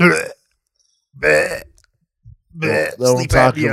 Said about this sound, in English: You should have another drink of that ginger ale and see how loud you can burp.